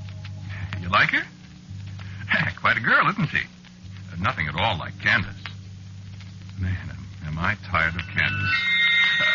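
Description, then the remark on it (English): People talk over a low steady hum, then near the end a telephone starts ringing with a bright, sustained electronic tone that stands out clearly over the voices. “Phone's ringing.”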